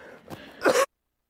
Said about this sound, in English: So I'm just going to cough really fast.